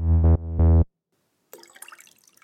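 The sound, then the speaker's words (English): Two short humming, voiced gulps, a brief pause, then a bubbly trickle of water being poured or sipped, soft and uneven, with no talking. “That was water, just for the record. It's not vodka or anything like that.”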